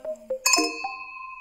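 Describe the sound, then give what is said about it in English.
Glasses clink together in a toast, a bright chime followed by a clear ringing tone that slowly fades. A few softer taps come just before, with no voices. “Grab a glass, sit back, and relax. Cheers!”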